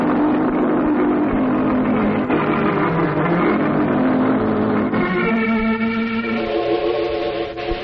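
A car engine roars loudly as a car is driven past in a hurry, its pitch dipping and then climbing as it revs and accelerates hard, with no voices over it.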